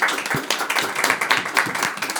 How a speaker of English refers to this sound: Thank you, round of applause